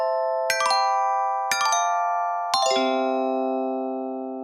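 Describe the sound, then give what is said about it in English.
A short three-note segment chime jingle, bright bell-like tones struck about a second apart, the final lower note ringing out and slowly fading. No voices, clean. “Indeed, with an exciting new chime.”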